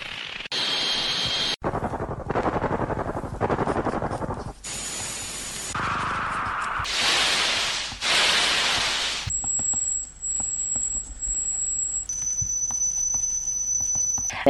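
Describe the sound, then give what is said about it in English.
A sequence of synthetic noises simulating tinnitus: bursts of hissing static and shaped noise bands change every second or so, then give way to steady high-pitched ringing tones, including a pulsing whine and a sustained shrill tone. “There are a number of different sounds which are connected to tinnitus. Some of them are high-pitched sounds.”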